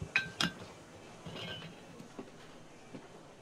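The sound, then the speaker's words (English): Two quick, bright glass clinks ring out close together, followed by a soft, hissing rush of beer being poured, all fairly quiet with no talking. “So someone came in, and let's play a little bit of this while we're pouring.”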